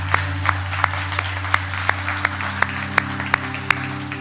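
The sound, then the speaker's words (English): An audience claps together in a steady, even rhythm, sharp claps landing about three times a second over a wash of scattered applause and a low, constant hum. “We can clap for that.”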